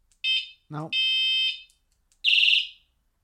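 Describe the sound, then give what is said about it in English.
A shrill, high-pitched whistle horn, set off with a horn switch at 10:30 in the morning in an apartment complex, blares in several bursts, the last one warbling rapidly, with a brief low voice-like sound between the first two blasts. “Oh, horn switch is here. Oh, it's a whistle?”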